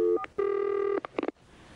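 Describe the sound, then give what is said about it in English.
A telephone number being dialed to make a prank call: a couple of short electronic tones, one long steady beep, then a quick burst of rapid key tones, with no voices. “We're going to call up Tara Rod.”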